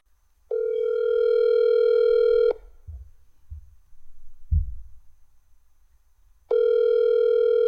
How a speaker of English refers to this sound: this guy, again, is ducking my phone calls. Where are you, Steve? Are you going to answer the phone this time?